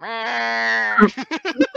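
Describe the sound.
A person imitates a Minecraft sheep's bleat, one long steady nasal baa, followed by a quick run of short choppy vocal bursts, fairly loud.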